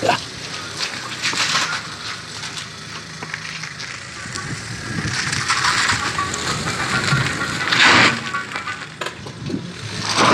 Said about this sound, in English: So you should hear this coming towards me, and then you should hear it past my head. Like, bloody hell, he's got a... Bloody hell, it's a creaky undercarriage. The car doesn't sound too healthy either.